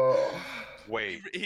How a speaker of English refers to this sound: The gasp!